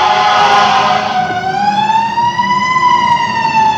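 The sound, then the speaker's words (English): A loud siren of a Live Oak fire truck wails, its pitch sliding down and then slowly climbing again, with a low engine rumble underneath and no voices. “Live Oak has one of the nicest looking fire trucks.”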